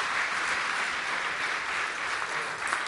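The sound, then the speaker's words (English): A crowd claps steadily for about three seconds as two girls arrive, a dense, even wash of applause that holds at a constant loudness with no speech over it. “Let's give them a big cheer as they come in.”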